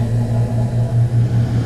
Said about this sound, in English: Okay, so ignore the air conditioning that just kicked on. Wow. Okay, so you heard the air conditioning kind of kick on and destroy the mood that we had going.